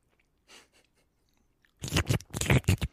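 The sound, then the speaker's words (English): Wet, noisy chewing of vegan ramen noodles right up against the microphone, a few soft smacks at first, then a loud, sloppy burst of rapid mouth sounds over the last second. “What level of ASMR do these mics provide? Like if I chew...”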